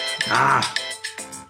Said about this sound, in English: My timer's up.